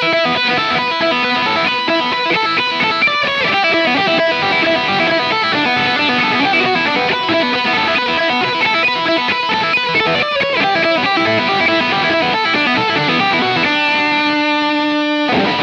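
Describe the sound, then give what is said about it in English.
A loud, dense distorted electric guitar riff churns with fast, driving rhythm and thick harmonics, then ends on a sustained ringing chord. No voices are heard. “My riff for the week. Here we go. See if you recognize it.”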